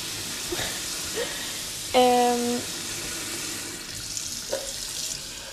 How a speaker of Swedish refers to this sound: Nu kommer det vatten här.